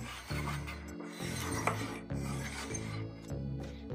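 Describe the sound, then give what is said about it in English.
A little pretend doll stroller being pushed, its wheels giving a steady run of rhythmic creaky, rasping squeaks with a low, buzzing tone, repeating every half second or so, with no voices. “It's a little pretend stroller. It's squeaky.”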